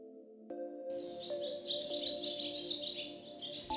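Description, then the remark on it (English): Bright, busy birdsong with rapid chirps and trills fills the air after a brief quiet start, layered over a soft, steady tonal hum in the background. “One day in spring, the family heard a familiar birdsong, and running out, they saw their little crooked-legged friend with something in his mouth that looked like a seed.”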